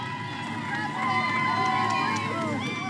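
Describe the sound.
A crowd of passersby in Rehoboth Beach, Delaware, cheering on the president during his vacation and calling out, overlapping voices forming a steady, loud babble that swells slightly after the first second and holds for the rest.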